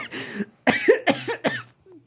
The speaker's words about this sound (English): Coughing.